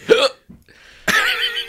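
A sharp, voiced hiccup up close, then a quiet pause and a second loud hiccup that trails off into a drawn-out vocal sound.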